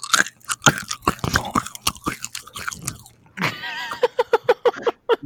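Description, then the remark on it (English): Loud chewing of food into a microphone, with wet, crunchy bites and smacking in an irregular rhythm, then a brief pause followed by a quicker run of moist chomps. “There was a good level of moistness in the chew.”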